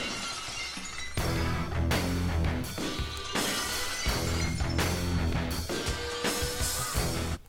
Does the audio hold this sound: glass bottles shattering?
yes